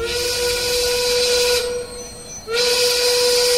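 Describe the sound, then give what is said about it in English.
A loud steam train whistle sounds in two long, steady blasts separated by a short pause, with a breathy hiss of steam running through each blast, as the night train to Sacramento arrives in Elko, Nevada. “Mama, there's the whistle. We're arriving in Elko, Nevada.”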